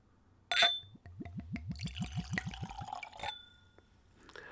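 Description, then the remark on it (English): Gin glugs from a screw-cap bottle into a clean Glencairn glass in a quick run of about a dozen rhythmic gurgles, opening with a bright clink of glass and ending with another tap, clear. “So let's go for a pour.”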